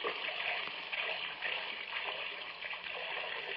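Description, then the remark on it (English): Cold tap water runs steadily into a drinking glass in a small kitchen for a few seconds, a continuous hiss and gurgle with no one talking. “Nothing like cold water.”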